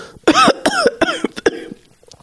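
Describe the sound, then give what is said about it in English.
A harsh, hacking coughing fit: a cackling cough degenerates into four or five loud, raspy coughs in quick succession with wheezy, voiced edges, then tapers off into a few faint breaths. “Brady coughs a cackle. It degenerates into a hacking fit.”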